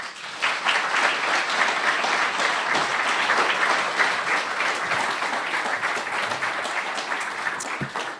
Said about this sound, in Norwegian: Gi henne en varm applaus.